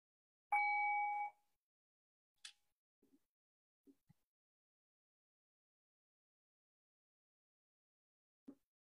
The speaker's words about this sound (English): So again, this will be a guided meditation. I'll ring the bell. And I'll move us through this practice.